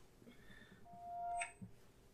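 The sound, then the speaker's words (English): A short electronic phone notification tone rings out, a steady beep that rises into a brighter chime before cutting off, fairly quiet over faint room noise. “Oh, your phone? Volume.”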